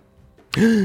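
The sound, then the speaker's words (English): A sudden, sharp gasp from a voice after a brief quiet moment, the breathy intake catching into a short, loud, drawn-out voiced exclamation. “Gasp.”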